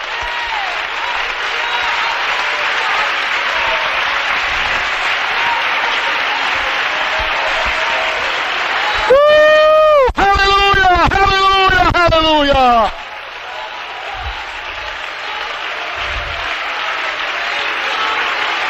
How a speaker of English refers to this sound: Let's stand up and clap our hands and love Jesus tonight. Hallelujah.